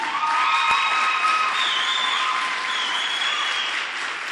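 An audience claps steadily and loudly for several seconds, a dense, even patter of many hands, with a few high cheers and whoops riding over the top.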